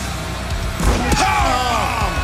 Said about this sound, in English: Nobody has quite the destructive force of Wardlow. Of course not. For the powerbombing. You got 3 guys there, Excalibur, for God's sakes. The powerbombing on a damn chair.